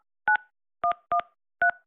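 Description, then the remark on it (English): Four short telephone keypad beeps, each a steady two-pitched touch-tone, tapped in an uneven rhythm with silence between them and no voices, as a 5-digit zip code is entered into an automated phone menu. “Please enter your 5-digit zip code to be routed to the closest patient care team.”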